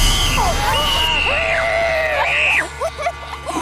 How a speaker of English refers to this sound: Who screams like that? You sound like a little girl.